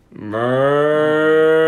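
A single loud, sustained cow moo rises quickly and holds steady as a deep, drawn-out bellow with no other sounds around it.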